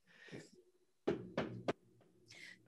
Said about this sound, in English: I'll get it. Was that a knock? Oh, there was a knock on the door, clearly.